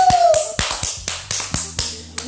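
Sharp, fairly loud claps land in a steady rhythm, about nine over a couple of seconds, like a small group or single person applauding, with no talking.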